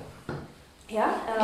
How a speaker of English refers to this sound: Oh, closing the door.